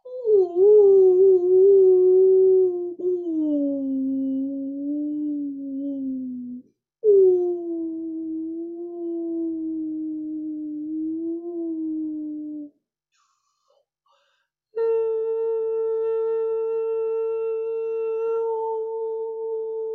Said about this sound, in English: So here's some whale sound for all of you who know you've lived in Atlantis. And you know that you used to connect with sound and breath, the whale breath.